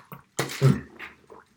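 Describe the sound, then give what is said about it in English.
A short, airy slurp as a drink is sipped, followed by a wet gulp and a soft breathy exhale, all in under two seconds with no talking. “I'm just going to take a sip of my fine beverage because I've got an incredibly dry throat.”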